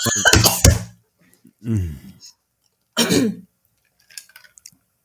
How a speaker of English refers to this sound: We do apologize for our coughing and hacking, but I would assume just about everybody somehow or another has been impacted by COVID. So we are getting through it the best we can.